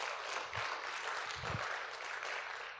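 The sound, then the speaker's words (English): A crowd applauds steadily, a dense, even wash of many hands clapping that holds at a fairly constant level for the whole stretch, with a couple of low thumps underneath. “Come on, if you believe that, give him a good round of applause.”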